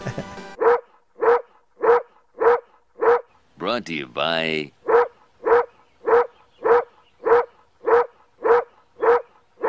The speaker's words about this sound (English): It sounds like a dog barking. I love it. It sounds like the bark from that Simpsons episode with McGruff, the crime dog.